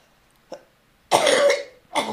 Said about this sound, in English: I'm sorry, I'm having a bad time with my cough.